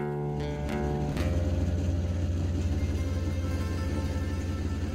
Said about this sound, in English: Then, we sat in more traffic.